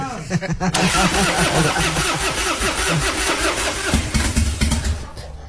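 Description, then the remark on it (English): A car engine at a McDonald's cranks over and over in a steady, rhythmic churn, loud and struggling without catching. Voices can be heard mixed in with the grinding starter. “You see, it sounds like it's like it wants to take, but then it doesn't.”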